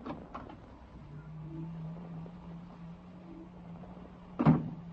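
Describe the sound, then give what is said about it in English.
A door opens: a latch clicks, a long low hinge creak drags on for a few seconds, then a solid bump ends it. Fairly quiet, with no voices. “I got a feeling up my back the minute you opened the door.”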